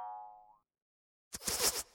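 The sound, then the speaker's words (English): A springy twang rings out and fades as a tripwire trap triggers, then after a short silence a loud burst of rapid whooshing and clattering arrows shoots out. “Tripwire. Where?”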